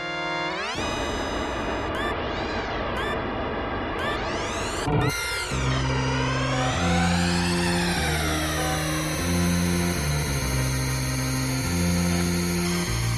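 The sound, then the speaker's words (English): A buzzy, synthesized hover-car engine whine from the racing video game F-Zero sweeps up and down in pitch, loud, then keeps droning over an upbeat electronic bassline as the game's racing music kicks in. “thought about Captain Falcon back in the days, just associated with driving a fast hover car and cool music and racing.”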